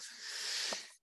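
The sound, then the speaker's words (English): A single sneeze: a breathy, hissing burst of air lasting about a second, fairly quiet and steady, then cutting off sharply. No one speaks during it. “excuse me, pardon me. Bless you.”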